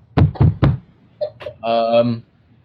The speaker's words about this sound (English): Knock like the police, dude. Hella loud with your fist.